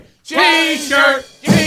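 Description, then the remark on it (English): A person lets out a loud, drawn-out scream. The voice rises and falls across about a second and a half, then bursts out again briefly at the end. “What did you just scream?”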